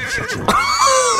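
A horse whinnies once, loud, a shrill, quavering neigh that rises and then trails off over about a second, with no voices around it.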